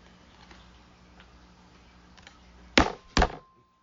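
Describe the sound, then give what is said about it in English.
Two sharp, loud slaps of hands hitting a slapjack card on a table in quick succession during a game of Slapjack, after a stretch of quiet faint ticking and rustling. “That was a slapjack card, so we had to slap.”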